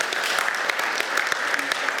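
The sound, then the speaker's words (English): A crowd claps steadily in applause for a testimony of answered prayer, the dense patter of many hands at a fairly loud, sustained level with no voices standing out. “Let's give a round of applause for that.”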